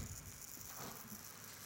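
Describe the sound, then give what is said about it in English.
Someone fiddles with a gold sand timer, giving a soft, steady patter of grainy rattling and hissing that runs the whole time without pause; no one speaks. “Can you stop fiddling with whatever you're fiddling with? It's my little gold sand timer. It's not that little and it's noisy.”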